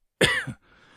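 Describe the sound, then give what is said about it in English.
A single abrupt cough tangled with a burp, one rough guttural burst lasting under half a second, with a short throaty tail before it cuts off into quiet. “Oh shit, I coughed and burped at the same time, but scared the hell out of me.”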